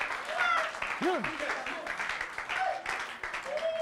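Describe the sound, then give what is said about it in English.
An audience breaks into steady, dense applause, clapping for Moses during a Bible reading, with scattered voices calling out and cheering over the clapping throughout. “You should be clapping for Moses, I tell you.”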